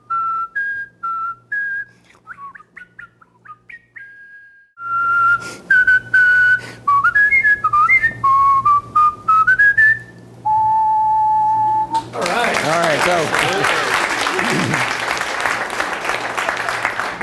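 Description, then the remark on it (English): A person whistles a lively melody, pure tones gliding and hopping between notes for about ten seconds, holds one long note, then loud applause breaks out and carries on. “all while giving tips for how to up your whistling game along the way.”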